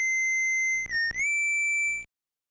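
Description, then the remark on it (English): A short video game whistle melody, Protoman's whistle track heard whenever you run into Protoman in the game: a held high tone slides down, then climbs to a new sustained note, with buzzy noise bursts underneath, before cutting off abruptly. No one speaks. “So there's another neat thing with that whistle track, too. Whenever you run into Protoman earlier in the game, you hear this.”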